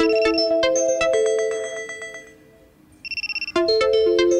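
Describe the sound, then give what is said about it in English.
A melodic electronic phone ringtone plays loudly and clearly, a bright chiming tune that pauses briefly, gives a quick pulsing beep, then resumes the melody, with no voices. “Is it someone's phone?”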